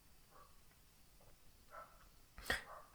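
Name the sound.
dogs making noise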